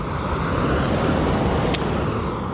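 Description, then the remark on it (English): A car arriving in a front yard: its engine and tire rumble fill the air with a steady roar, holding even in loudness throughout, with one brief sharp tick partway through and no voices. “This looks like my chariot.”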